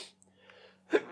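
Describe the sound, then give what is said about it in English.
A single sharp sneeze bursts out near the end, loud, preceded by a faint breathy intake over a quiet low hum. “Gesundheit.”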